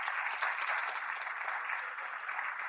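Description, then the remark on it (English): Scattered audience clapping from a modest crowd, a steady patter of many hands at moderate volume that holds for a few seconds without cheering or voices. “Clap if you know who that is authentically.”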